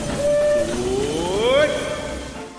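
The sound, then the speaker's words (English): A departing Disneyland Railroad train, leaving on a grand circle tour of the Magic Kingdom, sounds a loud whistle: a steady tone, then a long rising harmonic wail that swells before easing off, over a low rumble. “The Disneyland Limited, now leaving for a grand circle tour of the Magic Kingdom.”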